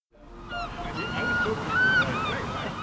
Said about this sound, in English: by the sea in Brighton